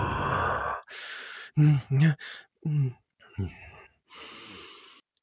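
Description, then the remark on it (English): A man sitting on the floor doing breathing exercises: a series of deep, breathy exhales at an uneven pace, some pushed out with a low voiced groan or sigh, fairly loud, separated by brief pauses. “And you can hear as he's breathing, every now and then the exhale sounds.”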